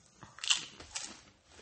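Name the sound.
chewing crunchy snack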